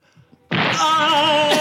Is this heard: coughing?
no